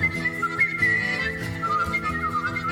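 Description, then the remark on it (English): A person whistles a steady, unbroken melody using circular breathing, with no pause for breath, its bright tone gliding between notes over a soft, low background hum. “He breathes in and breathes out equally. That's insane. He's circular breathing.”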